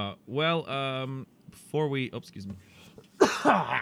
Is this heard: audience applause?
no